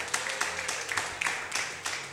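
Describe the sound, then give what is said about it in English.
A church audience claps for a couple of seconds as the sermon series Red Hot Love is announced: a soft, unenthusiastic patter of many hands with a few sharper claps standing out, and no voices over it. “The way you are clapping is like you are tired of this series.”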